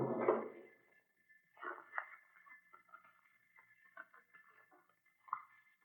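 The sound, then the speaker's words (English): A file cabinet drawer by the door in a museum scrapes open with a short rumbling slide, then soft papery rustles and light clicks follow as files are flipped through in search of the architect's building plans, over a faint steady hum. “I shall try the file cabinet by the door.”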